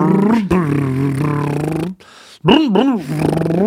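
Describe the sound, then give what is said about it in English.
A person's voice imitates a car motor with a loud, buzzing vocal drone, breaks off briefly, then returns with rising and falling revving swoops before settling into a steady hum. “Yeah, somebody in Japan whose job is to go.”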